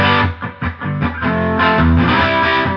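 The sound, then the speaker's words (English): An electric guitar with single-coil and humbucker tones played through an amp with an effects pedal, loud: a few choppy, rhythmic chord stabs give way to a thick, sustained distorted chord ringing out, with no talking. “It's something about that single coil tone that you can get out of it, and also the humbucker tones.”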